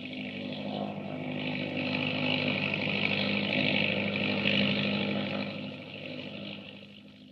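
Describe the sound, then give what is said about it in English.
An autogyro taking off at night from the grounds of Stonehouse, rising almost vertically over the trees: its engine and huge whirling propeller roar in a steady, buzzing drone that swells louder through the middle, then eases slightly toward the end. No voices. “It's an airplane, but not the kind you think. Miss Beecham, doctor, look! They're getting away in an autogyro.”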